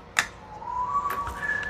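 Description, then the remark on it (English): A pet bird whistles a thin, sustained note that slowly glides upward, then jumps to a higher steady pitch, with a few sharp clicks and taps scattered around it. “oh, we got a real whistler this morning. He's a happy boy.”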